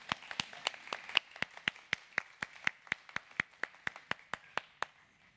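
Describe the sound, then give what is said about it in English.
An audience claps for the kids as they go to class, in a steady, even rhythm, about twenty sharp claps over five seconds, with a soft wash of scattered applause beneath the beat and no voices. “Can we clap for our kids as they go to class?”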